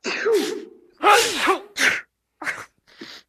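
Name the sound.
loud sneezing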